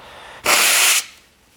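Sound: blowing nose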